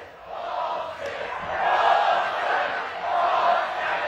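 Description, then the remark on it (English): A large stadium crowd screams and roars continuously, a dense wall of voices that swells louder around the middle and again near the end without letting up. “They just kept screaming.”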